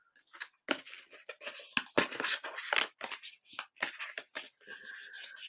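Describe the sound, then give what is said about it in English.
Thick cards being shuffled, a quick series of crisp riffling and sliding bursts with short pauses between, fairly quiet and with no talking. “These are really thick cards. They're hard to shuffle.”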